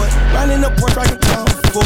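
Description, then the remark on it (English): A sustained tonal hum gives way to a rapid series of sharp, loud gunshot effects in uneven bursts, punchy, with no talking. “I like my gunshots.”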